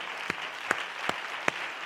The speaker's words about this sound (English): Clap your hands to that.